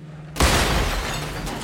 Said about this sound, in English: Impact, a shuddering, grinding crunch, a shower of sparks and smoke. The bump threw Len Fuller up hard against his safety belt, and his ears rang with the deafening bang bang bang of his roaring propellers cutting into the lower plane.